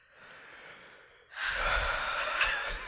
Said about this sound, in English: Can you hear it so close because I'm wearing the monitor headphones? Oh my god. Oh, it's like you're breathing so close into my ear.